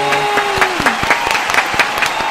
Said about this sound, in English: Why are we so into clapping today? It's getting weird.